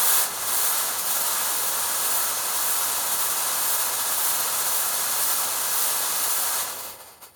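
A smoke machine lets out a steady, loud hiss for about six seconds, a broad airy rush that starts abruptly and then cuts off, tailing away quickly. No one speaks.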